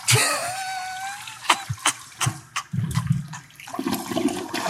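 A toilet flushes loudly, a rushing swirl of water with a rising gurgle, followed by a few short clunks and a lingering trickling drain.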